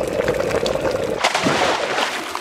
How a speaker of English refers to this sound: The wooden overhangs that run along the top of the walls of the keep. They have holes in their floors that soldiers can use to pour boiling oil through.